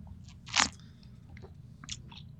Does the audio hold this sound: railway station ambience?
no